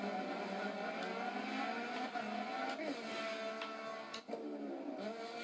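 Loud, continuous engine roar from racing cars at high speed on a long straightaway, with pitch shifts as cars sweep past almost side by side, one pass around the middle and another near the end, steady throughout with no talking.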